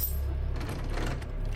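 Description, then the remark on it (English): Keys in a pocket jingle and clink in a quick, continuous metallic rattle, over a low rumbling background, with no one speaking. “I got my keys in my pocket.”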